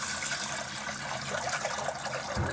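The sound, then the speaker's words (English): Steady sloshing and swishing of water as Indian basmati rice is washed and stirred around, a continuous wet churning sound, with no voices. “You just roll it around in the water and you decant the water, pour it off, leaving the rice behind.”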